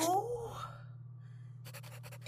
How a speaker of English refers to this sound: That is it. Put the pen to paper. You have this, girl.